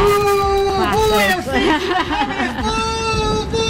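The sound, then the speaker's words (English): A crowd boos Alexandria Ocasio-Cortez (AOC) loudly and without a break as she walks down the street, many voices holding low, wavering tones that rise and fall together for several seconds, mixed with scattered shouts such as "She's a communist!" “That's AOC being booed.”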